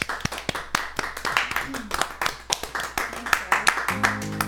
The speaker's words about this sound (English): Fabulous. Let's clap for her.